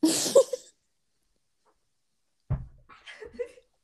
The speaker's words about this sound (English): I just need to blow my nose.